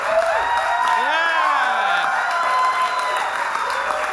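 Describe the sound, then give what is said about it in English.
A crowd at a live show in Los Angeles cheers and applauds steadily throughout, a dense wash of clapping with high whoops and shouts rising above it, loud and sustained without a break. “What a great crowd.”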